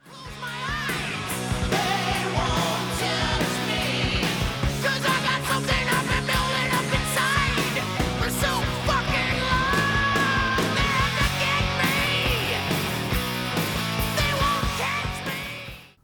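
A loud, dense stretch of hard rock plays steadily for about sixteen seconds, with pounding drums, heavy distorted guitars and a strained, shouted lead vocal riding over the mix.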